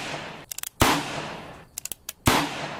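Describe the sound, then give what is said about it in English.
Pistol shots, discharged by Van Ness at his assistant trainer several times in rapid succession, echoing in a hall: two loud, sharp bangs, each trailing off over a moment and preceded by a rapid burst of smaller snapping pops. No one speaks. “Then Van Ness discharged the pistol at his assistant trainer several times in rapid succession.”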